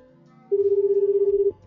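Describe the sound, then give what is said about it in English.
One ringback tone on an outgoing phone call placed from a dialing machine: a steady, slightly buzzing purr lasting about a second, clear and fairly loud, with faint low background noise before and after and no talking. “Pick up the damn phone”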